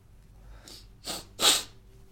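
A few short, breathy sniffs build into a sharp sneeze, with quiet background noise around them and no talking.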